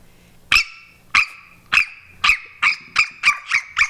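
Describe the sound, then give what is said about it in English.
A person imitates the yappy barking of Toto the dog: nine sharp, high-pitched barks that start spaced apart and speed up into a quick, steady series. The barks are loud and stand alone, with no talking. “I do a Toto bark though.”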